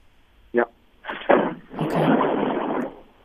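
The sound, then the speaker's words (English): A bomb explosion from military tank bombing, heard over a phone line: a short, muffled thud, then a heavier blast that swells into a long, rough roar for about a second before fading. The bombing is very close to an office in an area like a battlefield zone. “What was that sound? That's bomb.”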